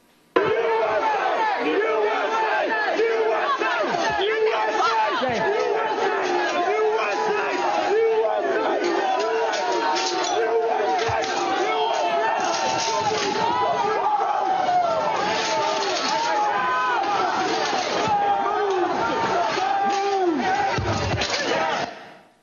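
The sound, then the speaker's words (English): A loud, agitated rioting crowd at the Peace Circle yells and chants continuously as it breaches a police line guarding bike racks, with overlapping shouting voices and occasional sharp bangs and slams cutting through the roar of the mob. “can you describe the crowd that had assembled at the Peace Circle as you and your fellow officers stood behind and guarded the bike racks at the Peace Circle?”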